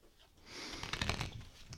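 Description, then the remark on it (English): A quick riffle of a new deck of playing cards being shuffled, a brief burst of fluttering, crackling snaps that builds and then fades, with no one speaking. “Here's a new deck. Shuffle it”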